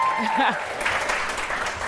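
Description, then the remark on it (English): An audience breaks into applause, a dense, steady wash of many hands clapping that swells quickly after a brief vocal whoop at the start and keeps going at a fairly loud level. “So guys, give us a round of applause.”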